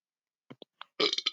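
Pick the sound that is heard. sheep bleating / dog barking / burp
burp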